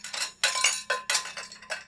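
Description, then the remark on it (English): Dishes and cutlery clink and clatter in quick, irregular bursts, a busy run of metallic and ceramic knocks with no voices. “ASMR, you're in a crowded dishwashing place.”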